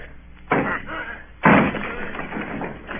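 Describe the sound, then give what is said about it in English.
The door of Bill Bones's house being forced in by men surrounding the house, with two heavy, booming thuds about a second apart, each striking loudly, then rumbling off into a muffled, busy background. “Down with the door, then!”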